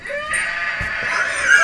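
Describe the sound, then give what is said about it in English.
A loud, drawn-out eagle screech, harsh and high-pitched, holding steady for nearly two seconds with a slight rise at the end, with no other sounds around it. “That's a bird, dude. That's an eagle. That's what eagles sound like.”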